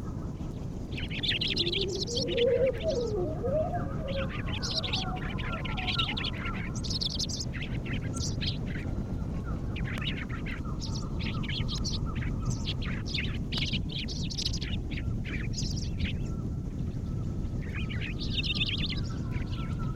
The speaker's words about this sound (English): Most of us see the Lincoln Sparrow only in the winter. Here is an early spring whisper song.